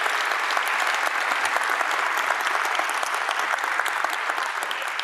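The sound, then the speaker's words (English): A church audience applauds its elders steadily, a dense wash of many hands clapping at once, holding at an even, fairly loud level for several seconds with no voices breaking through. “How about one more round of applause for our elders?”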